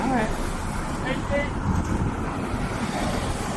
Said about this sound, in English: Like, whoa, careful, traffic.